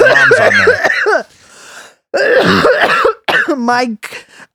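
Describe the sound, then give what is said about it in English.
Loud, close-up throat clearing and coughing bursts right into the microphone, several harsh rasping pulses with short pauses, mixed with brief voiced sounds. “I officially need to get you a cough button. Oh my God. You just did that right in the microphone.”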